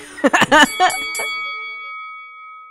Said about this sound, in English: Now ring that bell.